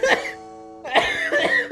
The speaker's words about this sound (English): Oh my gosh, you were laughing and then you coughed. I did the old man cough.